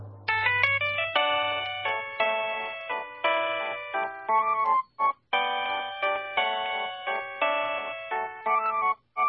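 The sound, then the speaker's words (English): A mobile phone ringtone plays Waltz of the Flowers as a bright, electronic melody of quick, chiming notes in a steady lilting rhythm, loud for about nine seconds, with no voices. “And now, this week's number one ringtone.”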